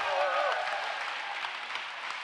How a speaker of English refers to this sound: If you believe that, give the Lord a clap and a shout in here.